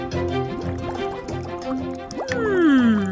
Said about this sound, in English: What lovely bubbling graces my eardrums. Have we reached the desired temperature?